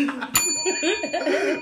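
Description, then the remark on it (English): A single bright bell is struck once and rings on with a sustained, shimmering tone that lingers to the end, while indistinct voices murmur underneath. “I'm going to get this bell tattooed right here on my hip, next to my ass.”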